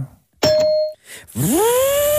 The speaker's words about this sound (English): So what you're going to hear is a ding to signify the 20 seconds that